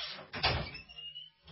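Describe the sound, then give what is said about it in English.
A door is opened to let a dog out, with a short clunk, followed by a faint, thin creak that fades out; no one speaks. “It wasn't a door sound effect, Jack. Let my dog out.”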